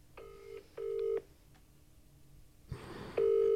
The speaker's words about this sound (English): Ring, ring. Is he going to answer, man?